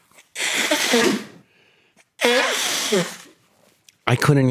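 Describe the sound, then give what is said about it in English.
Loud nose blowing: three forceful, harsh honking blasts, each about a second long except a shorter final one, separated by brief pauses, with a rough, voiced, trumpeting quality. “When I blow my nose, how loud it is.”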